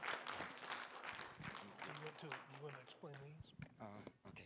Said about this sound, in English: Is it okay to put our hands together and give the Lord a clap? You know.